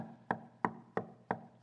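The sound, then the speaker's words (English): Five sharp, steady knocks on a hard surface, evenly spaced about a third of a second apart, fairly loud with a short resonant ring after each. No one speaks. “That's opportunity knocking.”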